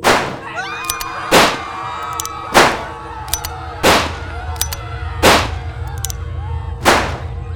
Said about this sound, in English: The crowd screamed and ran in panic as Bibo let off shot after shot.